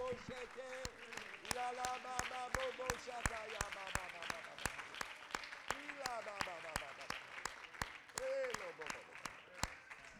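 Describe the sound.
A crowd claps their hands in worship of the Lord in a steady, rhythmic beat, loud, while voices sing and call out over the clapping throughout.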